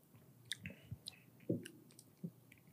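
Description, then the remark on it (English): Someone takes a quiet sip of a dry-hopped beer made with Tettnang and Saaz hops: soft wet lip clicks and smacks, a gulping swallow midway, then a few more small mouth sounds. Nobody speaks. “I'm giving the second sip.”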